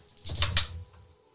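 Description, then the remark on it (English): Six dice rattle and clatter together in a quick burst of sharp clicks that trails off after about a second, with no voices. “So you roll your 6 dice.”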